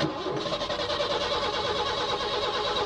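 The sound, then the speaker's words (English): A car engine cranks and sputters without catching, a steady, grinding mechanical churn that stays loud throughout with no voices present. “They have real engine noises of engines sputtering.”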